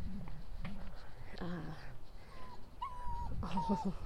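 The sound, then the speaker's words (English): A puppy whimpers in several short, high-pitched whines, thin and tonal, coming in a loose cluster over a low, murmuring background. “These are whimpers.”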